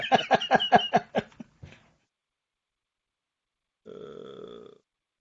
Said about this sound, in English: Don't burp.